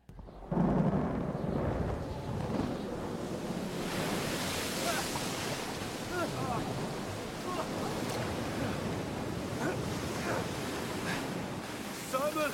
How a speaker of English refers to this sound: We're going to get into season 3, episode 8 of The Chosen, where it does a very good job depicting what was going on with the disciples as Jesus was far away and they were caught in a storm.